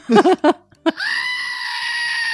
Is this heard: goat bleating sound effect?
yes